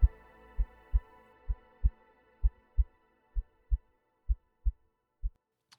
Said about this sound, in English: And now, again, hark! Louder, louder, louder, louder! Villains, I shrieked, dissemble me no more. I admit the deed, tear up the planks. Here, here is the beating of his hideous heart.